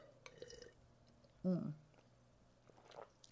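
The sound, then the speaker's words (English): Someone takes a sip of wine: a quiet wet slurp followed by a single short, louder swallow, with faint low rustling before and after and no talking. “let me take a sip of wine for this, actually.”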